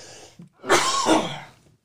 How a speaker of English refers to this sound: We don't need to listen to you cough all the time. If we had an editor, we'd cut all that out.